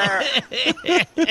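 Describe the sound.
A voice imitates a goat, letting out four short, wavering bleats in quick succession, fairly loud, with brief gaps between each cry.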